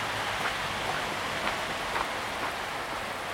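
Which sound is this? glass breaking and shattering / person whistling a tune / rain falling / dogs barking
rain falling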